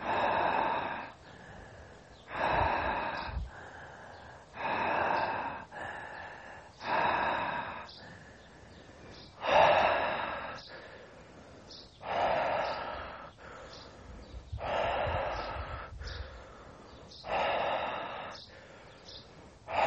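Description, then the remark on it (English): Deep, rhythmic breathing during a guided breathing exercise, with strong airy inhales and exhales repeating every couple of seconds, a few sounding almost like snorts or gasps. No one speaks. “Well done, keep on breathing.”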